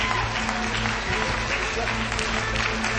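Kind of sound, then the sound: crowd, audience clapping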